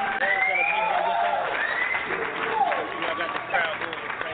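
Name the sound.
audience applause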